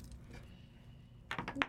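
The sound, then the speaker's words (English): After a stretch of low background rumble, dice rolled during a tabletop role-playing game clatter across a tabletop in a quick burst of sharp, bright clicks and rattles that end abruptly. “Runaway dice.”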